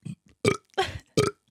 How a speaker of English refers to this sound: Can you burp on demand? Yes, I can. You breathe in then breathe out.